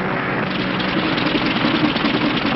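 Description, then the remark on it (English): An aircraft engine with engine trouble drones loudly and roughly, its uneven, sputtering rumble running steadily for a few seconds with no voices; the plane has to go back to the field. “Hey, what's that? Engine trouble, sir. We'll have to go back to the field.”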